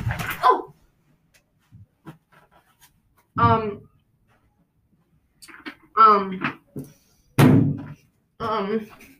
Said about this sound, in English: So I just died. I fell off my chair. I was pushing it too far back, and I lost control and fell.